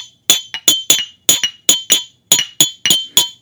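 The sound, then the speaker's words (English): Glasses clink together in a toast to the year 2019, a quick run of about a dozen bright, ringing chinks in uneven bursts, fairly loud with no voices. “On to 2019, partner. On to 2019. Cheers. Cheers.”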